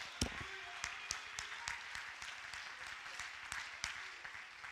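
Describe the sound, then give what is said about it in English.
An audience claps steadily throughout, a dense wash of applause with sharper individual claps standing out, while voices call out praise in the mix. “Somebody clap your hands. Give God a great big shout of praise.”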